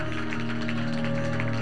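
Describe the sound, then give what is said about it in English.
An audience applauds, a steady wash of overlapping claps held over a sustained organ-like drone for the whole stretch, with no voices standing out. “Y'all clap for an apostle.”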